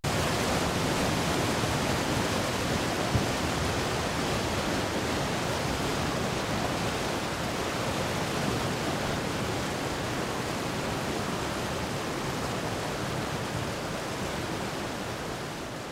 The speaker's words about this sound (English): It was this idea that led me to panning the river, moving away and up from the river, moving the microphone across the little gorge from fast-flowing water to the calm pool downstream.